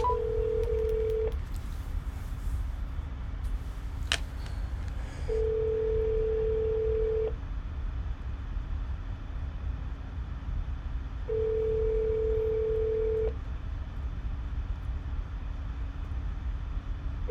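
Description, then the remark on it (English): A phone call to a U.S. congressman's district office rings out, the steady ringback tone sounding three times in two-second bursts with long pauses between, over a constant hiss of line noise and one brief click. “Let's give him a call, shall we? I don't expect an answer.”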